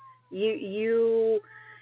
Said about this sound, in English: I hear the kitty. Oh, yeah, he's mad at me.